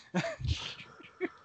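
Heavy, huffing breaths: a couple of rough, airy exhales up front, one with a slight voiced edge, followed by softer, uneven puffs of breath. No words are spoken.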